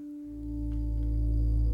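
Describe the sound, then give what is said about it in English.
Sustained electronic synth tones from the score of the film Possessor drone together, a steady high note over a thick, swelling low hum that grows slightly louder, eerie and unresolved, with no voices. “Yeah, this is the score. It's just a bunch of, like, weird synth tones and...”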